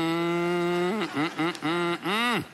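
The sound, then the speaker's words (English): A person imitates a cow's moo with a loud, drawn-out lowing voice, broken into a few wavering pulses that end in a rising, falling bellow. “Are you doing? Or just mooing?”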